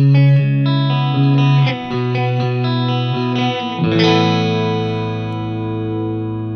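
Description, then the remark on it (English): Electric guitar played through a mild chorus effect on its less intense setting, depth about halfway and speed pretty low: a run of steady chords and single notes, then a final strummed chord left ringing out and slowly fading, with no talking. “So let's go to the chorus and the less intense setting.”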